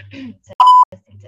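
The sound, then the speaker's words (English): A single loud, steady beep tone lasting about a quarter second, sharp, with faint low murmuring voices just before and after it. “Take two. Beep. Beep. Beep.”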